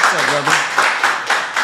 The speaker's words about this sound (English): Let's clap it up.